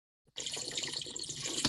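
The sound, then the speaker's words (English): A loud, continuous wet slurping rush lasts about a second and a half as a big gulp of a drink is taken, a bubbly, hissing gurgle like liquid being sucked up hard, with no talking over it. “That was a big gulp. Slurp.”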